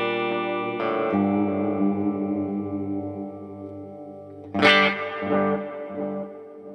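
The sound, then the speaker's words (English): An electric guitar played through delay and reverb pedals with a subtle, ambient effect plays sustained, layered chords with a gentle wash of delay and reverb, ringing out and decaying before a brighter strummed chord near the end, with no voices. “Like, the effect is pretty subtle. You know what I'm saying? Like, it's not a super overbearing delay or reverb, I would say.”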